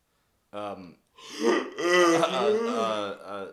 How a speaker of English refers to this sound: That yawn just there. Annihilated. No, it came out of nowhere, and it kind of hurt my throat.